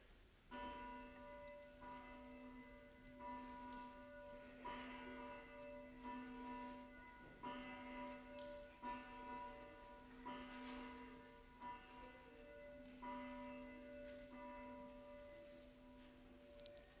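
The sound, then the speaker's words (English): A church's communion of saints bell, inscribed "Come, for all things are ready," rings steadily to signal the Lord's Supper, its strokes repeating in an even rhythm with long, sustained overtones that hum and overlap between each strike. “So today we ring the communion of saints bell. Listen, can you hear it?”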